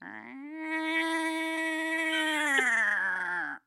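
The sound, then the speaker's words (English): A person imitates a yowling Calico cat with one long, steady, nasal wail lasting a few seconds, held at a fairly even pitch, moderately loud, with no other sounds around it. “Patch is the cat, the Calico cat. He stands outside of our house and he makes this noise.”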